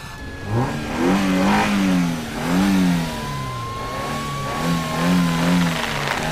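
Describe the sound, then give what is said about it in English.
A car engine rumbles to life and revs repeatedly, its pitch rising and falling in several surges over a steady idle, loud with no one talking. “Okay, start the car”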